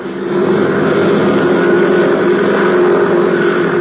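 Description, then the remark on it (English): A propeller plane engine at an airfield, being warmed up by a flight instructor before takeoff, runs at a steady, loud idle, a continuous droning hum with a throbbing low rumble that holds evenly throughout, with no voices. “A few miles away at the Curtis airfield, a young flight instructor was warming up his plane, preparing to take off.”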